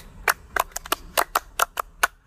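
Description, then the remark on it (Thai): Hands clapping to close a show, about nine sharp, crisp claps in a slightly uneven rhythm, given for the listeners. They are fairly loud and stand alone, with no talking. “ถ้าเราจะปิดรายการด้วยเสียงตร บมือ ตอนนั้นอีกคน กลัวอะไร ขอเสียงก็ตบมือให้กับคนที่ฟังมาถึงจุดนี ้”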